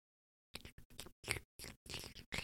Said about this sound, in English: This is going to be ASMR chewing